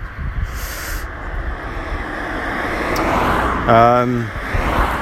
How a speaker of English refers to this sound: Walking through the town is okay. Just gets a bit grey and a bit noisy, like where I am right now. A lot of cars.